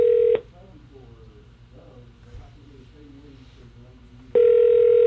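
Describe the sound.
An outgoing phone call being dialed: a loud, steady ringing tone cuts off early, a stretch of faint muffled voices follows, then the ringing tone sounds again.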